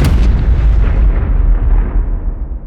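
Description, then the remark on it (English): A single powerful explosive shockwave blast bursts out at once, its deep booming rumble rolling on and slowly fading over a couple of seconds, loud with no voices. “A shockwave quickly follows.”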